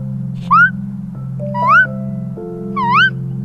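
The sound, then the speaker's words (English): A voice imitates a bird with three squeaky, rising chirps, evenly spaced about a second apart, over a steady low hum. “Kind of like a squeak and a chirp mixed together.”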